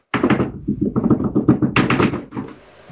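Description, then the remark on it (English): A quick, uneven flurry of hard plastic taps and clacks as a drum roll is tapped out with fingers on a computer keyboard, which breaks; loud and continuous for about two and a half seconds before trailing off into a faint hiss. “That was the weirdest fucking drum roll I think I've ever heard.”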